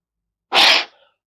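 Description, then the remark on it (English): One sharp, forceful exhale, a CO2 dump to get rid of extra carbon dioxide, bursts out through the mouth, a loud breathy whoosh lasting about a third of a second before trailing off into a faint hiss. No one speaks. “You know, a strong, forceful mouth breath, we call them CO2 dumps, to dump off the extra CO2.”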